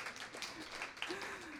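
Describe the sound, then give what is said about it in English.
A short burst of audience applause after a poem at a poetry reading, a dense wash of many hands clapping at an even, moderate level, with faint murmuring voices mixed in underneath. “It's nice when audiences clap after every poem, but you don't need to.”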